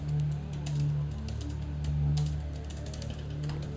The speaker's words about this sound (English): I'm typing things. Okay, I'm typing things, fuckers. I'm typing shit.